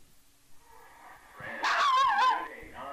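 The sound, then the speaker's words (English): An angry Chihuahua lets out a loud, high-pitched, wavering snarl-bark, lasting under a second after a quiet stretch, with a shorter yap trailing at the end. “And if you think, well, that sound, not only does it look like a Chihuahua, that sound marries up with the sound the angry dog is making, must be a Chihuahua.”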